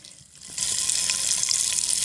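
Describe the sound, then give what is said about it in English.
Bacon sizzling in a hot pan: a dense, crackling hiss that kicks in after a brief quiet moment and stays loud and steady, with no voices. “Option one, someone cooking a bacon using an iron.”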